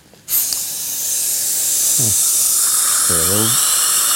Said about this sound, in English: And the one thing with this burr kit is I don't mind going back in and adjusting the porcelain because I can go back in with the Suriglaze porcelain polishing system and take it back to its glaze shine.